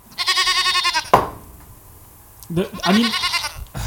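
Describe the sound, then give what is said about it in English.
Two loud, quavering sheep bleats, each about a second long with a pause between, clear with no talking over them. “Sheep. Herding sheep is what you do. I should have had cats on here.”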